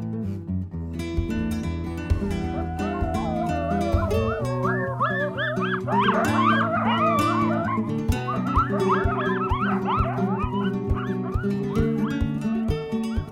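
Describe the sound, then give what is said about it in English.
A chorus of coyotes yipping and howling together, wavering high-pitched cries overlapping continuously for several seconds, loud, with no talking. “you know, listening to them. And I think there's something special about having that predator in our woods”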